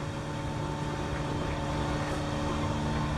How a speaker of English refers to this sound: Somewhere between Tasmania and New Zealand, on board Thomas Rouant's boat, where we hear the sound of an engine, usually not a good sign.